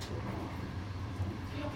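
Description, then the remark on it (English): A steady, even low rumble inside a slow moving train carriage in China, approaching Tianjin, its first stop after Beijing, with a continuous hum and faint mechanical rattle and no clear voices. “We are currently approaching Tianjin, the first stop on this train, and it is an hour later, and that always astonishes me.”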